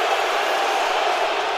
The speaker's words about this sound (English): I can't believe they booed him. That's so mean.